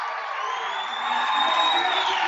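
A travelling crowd cheers steadily during the first quarter of a high school basketball game with Kearney High and Pius, a dense roar of voices and whoops that swells slightly louder in the second half, with no clear speech over it.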